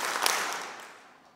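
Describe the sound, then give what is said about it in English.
An audience, asked to do three claps, claps together in a short, ragged burst that blurs into a wash of applause rather than three crisp beats, then quickly fades away. “I'm asking you to help me. Three claps.”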